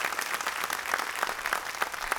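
A crowd claps steadily, as called for, to celebrate 50,000 people having come to Christ in the church, the many overlapping hand claps forming a dense, bright wash of sound with faint rhythmic accents and no voices standing out.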